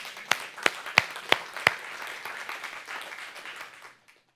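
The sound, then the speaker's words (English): An audience applauds: five sharp, evenly spaced claps ring out first, then a dense patter of many hands fills in steadily before cutting off abruptly near the end. “We can clap for that.”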